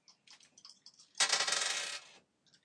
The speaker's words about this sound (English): So, roll your dice, you get plus 3. Because we've already got a minus one.